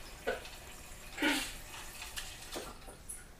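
Water runs and splashes into a Yeti insulated tumbler cup as it is filled, in a few uneven bursts, fairly quiet, with soft dripping between the louder gushes and no voices.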